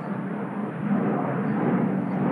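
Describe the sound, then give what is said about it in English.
A loud, steady roar of an airplane passing overhead, a broad rushing rumble that holds constant and swells slightly partway through, with no voices over it. “So, friggin' planes.”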